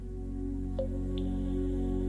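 A clear drop of water plinks into a pool, followed by a fainter second drip, both ringing briefly over a steady low ambient hum with no talking.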